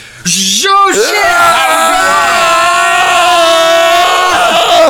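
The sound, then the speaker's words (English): Loud, sustained screaming from more than one person, high-pitched and piercing, holding steady for several seconds after a brief rising whoop at the start. “I don't know why I'm screaming. I'm just adding to the tension.”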